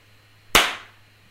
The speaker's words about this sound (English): That was me killing a bug.